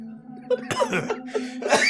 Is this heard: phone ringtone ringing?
no